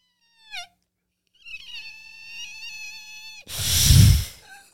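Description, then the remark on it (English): A voice imitates a fart: a quick falling squeak, then a drawn-out squawking tone, ending in a loud, rough, breathy hiss that fades away. “So it starts with a squawk and then goes right into hissy bird.”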